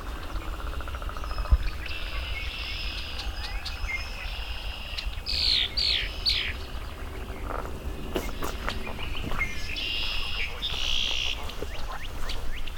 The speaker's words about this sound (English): I have a female red-winged blackbird in front of me. First one I've seen this year. Some male singing. There's another male landing right above me.